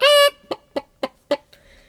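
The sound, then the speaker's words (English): A voice imitates a chicken: a drawn-out, nasal squawk followed by four quick, evenly spaced clucks, clear, with no other talking. “And you're going to have a chicken, are you now”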